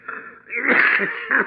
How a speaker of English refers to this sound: All of a sudden, he pulled a bandana out of his pocket and began coughing.